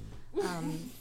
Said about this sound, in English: We have a snoring dog over there. Just deal with it.